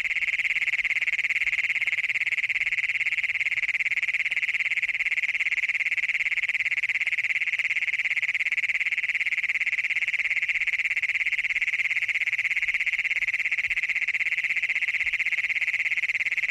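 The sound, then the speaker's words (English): A continuous, high-pitched trill of adult male frogs or toads rings steadily throughout, an unbroken buzzing chorus of advertisement calls recorded near Wilcox, Colorado, heard clearly with no voices. “These so-called advertisement calls by adult males hoping to find a mate were recorded near Wilcox, Colorado.”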